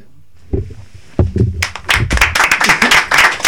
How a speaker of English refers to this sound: Round of applause. Yeah. Absolutely.